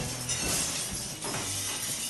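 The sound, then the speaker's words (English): Glass shatters loudly, a dense burst of bright crashing and tinkling shards, with a second wave of breaking debris around the midpoint before it settles. “The sound of glass breaking.”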